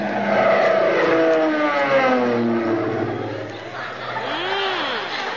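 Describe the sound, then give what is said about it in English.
A low-flying airplane roars past, its loud droning engine sliding steadily down in pitch as it goes by, followed by a brief rising-and-falling engine whine. “Say, that's mighty pretty flying at that, Molly.”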